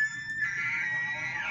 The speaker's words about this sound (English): Yeah, that's close to elk. Yeah. That's an elk. That's pretty good. Definitely. That is an elk.